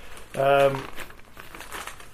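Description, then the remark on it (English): A brief burst of paper crinkling as a magazine is picked up, held up and handled, lasting about half a second, followed by quiet, indistinct voices in the background. “In the new 4020, which is out now. Hold it up.”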